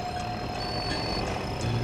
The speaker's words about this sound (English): So the kill dozer is just randomly driving around the island, it seems like.